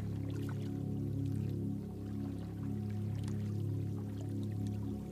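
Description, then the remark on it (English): Gentle water lapping and trickling softly, with small scattered splashes over a steady, continuous low drone. No one speaks. “Listen to the soothing sound of lapping water.”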